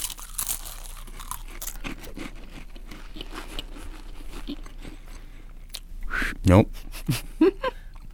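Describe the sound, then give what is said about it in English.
Dry, irregular crunching of saltine crackers being chewed during a challenge to eat a saltine and then be first to whistle the Olympic theme, a steady scatter of brittle crackles, with a few louder muffled vocal sounds and strained tones near the end. “Now, your job is to eat the saltine, and then the first one to whistle the Olympic theme or really make any sound at all wins.”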